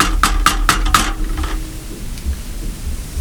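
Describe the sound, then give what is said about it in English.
Four quick, evenly spaced knocks on a door, sharp and fairly loud, followed by a couple of seconds of low rumbling background noise with no voices. “So I'm over there like playing beer pong with her and I hear a knock on the door like.”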